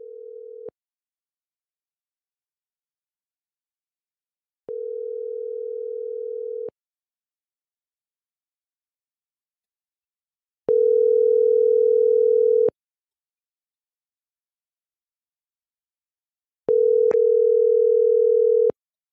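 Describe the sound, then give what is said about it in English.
A solar-powered cell phone rings with a steady, low electronic tone repeating in long two-second bursts separated by roughly four seconds of silence, about four rings in all, clear with no voices. “Exactly 3 days after he went out hiking, Tim's solar-powered cell phone rang once again”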